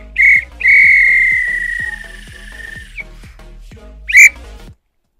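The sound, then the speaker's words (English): A referee's whistle blows three shrill blasts at the end of a match, a short one, a long sustained one, then another short one, loud over a faint low background rumble. “This is when the ref blow the whistle because it's finished.”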